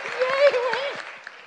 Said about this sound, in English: Thank you so much from the bottom of our hearts, and we should clap